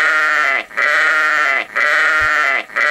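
A sheep sound effect, an old staple of The Savage Nation: a sheep bleats loudly three times in a row, each call a long, wavering, nasal cry with brief gaps between, and no talking over it.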